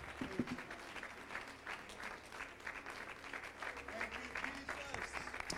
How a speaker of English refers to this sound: Could we give them a hand?